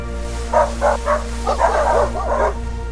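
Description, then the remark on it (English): Sled dogs barking: three quick, evenly spaced barks, then a denser burst of overlapping yips and barks, over a steady low hum with no talking. “Even one of those sled dog type situations.”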